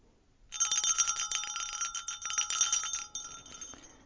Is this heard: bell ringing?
yes